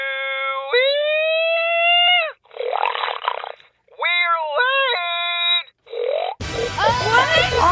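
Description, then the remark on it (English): A man bellows the winning call at the annual hog calling contest in Madison, Wisconsin: a loud hog call in several long, drawn-out whoops with wavering, swooping pitch, separated by short pauses and sounding slightly tinny, before a brief clatter of other voices at the end. “You know, over the weekend in Madison, Wisconsin, they did their annual hog calling contest.”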